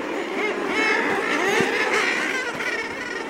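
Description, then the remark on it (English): A dense chorus of common murre calls, seabirds of the auk family, harsh growling and honking voices overlapping continuously and fairly loud, like a crowded seabird colony with no pauses. “The common murre is among them.”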